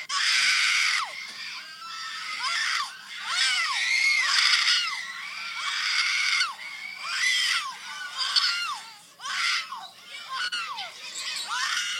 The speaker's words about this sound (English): Now I don't know who this little child is screaming, but and it's not funny.